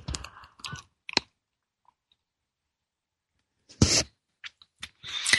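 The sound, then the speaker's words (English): Quiet sounds of someone sipping tea from a cup: a few soft clicks and clinks, a pause of near silence, then a short slurping sip followed by more faint handling noises. “But whatever it is that perhaps most bothers, irritates, worries, terrifies you, just call that into your mind right now while I have a sip of my tea.”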